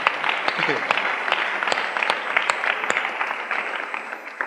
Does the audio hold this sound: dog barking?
no